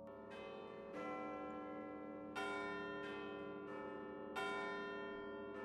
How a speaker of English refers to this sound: But at 8 o'clock that night, listeners across the country all heard the chiming of the bells at Sydney's GPO, in imitation of and homage to the clanging of Big Ben's bells in London that ordinarily began A-class stations' morning broadcasts.